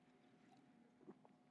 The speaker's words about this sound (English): He says, let me take a drink of water real quick.